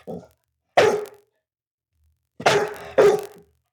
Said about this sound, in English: This dog was a puppy not long ago, and listen to the manly voice that he now has.